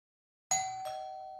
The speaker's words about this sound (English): The doorbell's chimes echoed through the house.